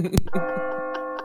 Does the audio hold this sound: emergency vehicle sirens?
no